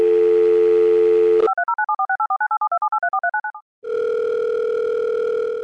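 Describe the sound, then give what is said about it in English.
A loud, steady telephone dial tone hums before a phone call, gives way to a quick series of warbling electronic beeps, pauses briefly in silence, then the steady tone returns. No one speaks. “Mr. Paul's going to be joining us on a phone call”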